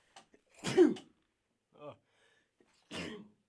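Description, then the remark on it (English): A loud sneeze bursts out, followed by a brief voiced noise and then a second shorter, breathy burst, with quiet pauses between them and no talking. “Hold on, I gotta sneeze.”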